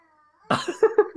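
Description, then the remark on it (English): A child screams outside a house: one loud, harsh shriek, then three short, sharp yelps in a quick uneven rhythm, with no talking over them. “There's a kid screaming outside your house right I think now.”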